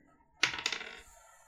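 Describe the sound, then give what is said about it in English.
A quick clatter of five dice tumbling onto a hard tabletop during a tabletop role-playing game damage roll, two sharp hits followed by a brief rattling scatter that settles within about half a second. Fairly bright, with no voices. “Okay, I rolled a 1 on 3 out of 5 dice.”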